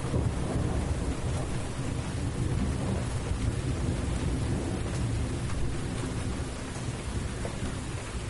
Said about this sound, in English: There's that thunder.